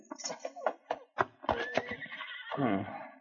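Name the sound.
horse neighing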